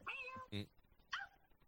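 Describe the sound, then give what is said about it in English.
A female cat meows a few times: a drawn-out, harmonic mew, a brief harsh burst, then a shorter rising mew, with quiet background noise between them. “She just did. Did you hear her? Meow. Meow.”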